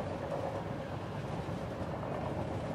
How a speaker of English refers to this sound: As the train's movements soothe you to sleep, your legs, ankles, and feet dissolve into a weakened sensation.